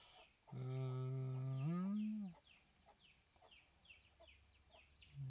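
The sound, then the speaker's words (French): Small hens: a long, loud drawn-out call rings out first, then a run of soft, short clucks follows at a steady, scattered pace. “Il y a les petites poules là.”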